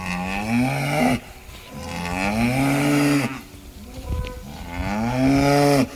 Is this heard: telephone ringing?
no